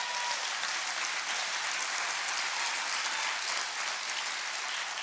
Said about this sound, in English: You know how I love Jesus. Why don't we give him a hand clap right now?